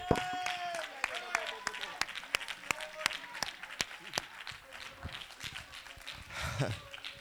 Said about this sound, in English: Oh, clap your hands.